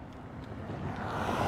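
vehicle, car passing by

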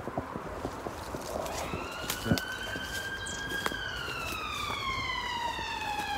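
vehicle, emergency vehicle siren

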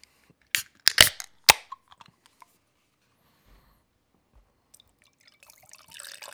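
food or drink, beer poured

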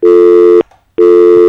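signal or alarm, telephone dial tone

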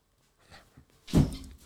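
household object, door being closed

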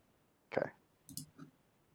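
household object, dice being rolled

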